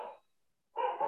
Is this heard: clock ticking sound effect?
no